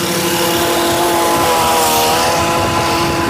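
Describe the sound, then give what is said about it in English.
Steady, loud engine drone from vehicles in traffic, with a rough rumble and a sustained hum that holds throughout, no voices. “I'm in traffic here.”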